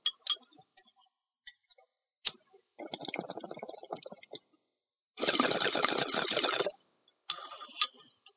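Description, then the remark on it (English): A lighter, used to light weed for smoking, clicks several times with sharp, isolated snaps, then a scratchy rasp of the wheel gives way to a loud, steady hiss lasting over a second, followed by a few more clicks. “So if you hear click, click, fire, fire, and all that other shit, some coughing, grow up.”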